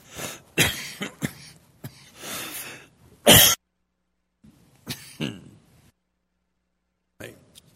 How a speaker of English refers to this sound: Did you know that that cough was heard around the world?